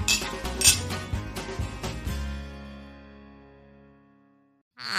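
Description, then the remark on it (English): A quick flurry of bright glass clinks over about two seconds as glasses touch in a cheers toast, followed by a clear ringing tone that slowly fades away into near silence. “Well, I think it's a cheers to that. Let's. Cheers.”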